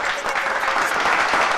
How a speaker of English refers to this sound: Let's give it a applause. That's right.